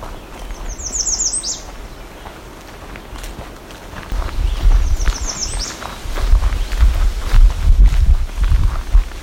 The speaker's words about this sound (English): We're hearing a lot of black-throated green warblers and some American red starts right now. And one red-eyed vireo.